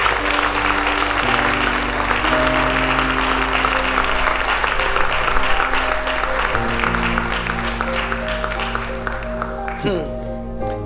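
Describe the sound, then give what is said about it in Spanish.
Steady, dense audience applause for the King of Kings and Lord of Lords fills the whole stretch, a continuous roar of clapping over sustained keyboard chords, with occasional voices and cheers mixed in before it thins slightly at the end. “¿Alguien puede darle un aplauso al Rey de Reyes y Señor de Señores?”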